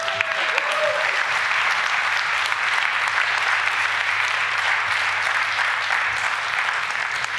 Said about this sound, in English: Give her a big clap.